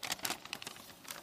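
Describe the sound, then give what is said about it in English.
Crisp paper crinkling as a sheet of paper with two handwritten lists is handled, with several quick rustling bursts spread across a brief moment and no voices. “Now look, this is the original piece of paper.”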